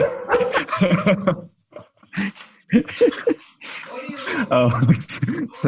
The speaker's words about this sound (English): And then, of course, there's always the barking dogs that come in and help with the process. 1 minute, I'm putting him away.